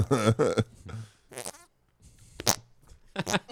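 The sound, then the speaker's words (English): Wet, sputtering farts in several short bursts, fairly loud, with brief pauses between them and some voices mixed in. “Got the splatters there, dude. He's catching a second wind. Literally.”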